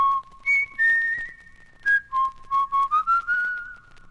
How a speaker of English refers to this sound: Several hundred note combinations later, a theme evolved that appeared to fulfill the requirements. Simple, memorable, easy to whistle.